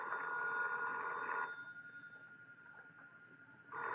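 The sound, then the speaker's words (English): A telephone rings with a steady electronic trill for about a second and a half, pauses, then starts ringing again at the end; fairly loud, with no one talking. “That's your phone, Mr. Austin.”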